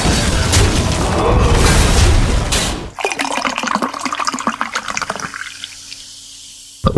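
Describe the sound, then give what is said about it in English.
A drink is poured into a glass with a loud rushing pour for a few seconds, then gives way to a crackling fizz of bubbles that gradually settles, with no voices. “And without any other distractions, because I know that I tend to like go on a rant, let's start by pouring a drink and jumping right in.”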